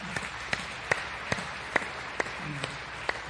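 Sparse, scattered handclaps from a Baptist church audience welcoming a couple and their few-weeks-old baby attending for the first time: about eight sharp, separate claps spread unevenly over a few seconds, fairly quiet, with a faint murmur of voices underneath toward the end.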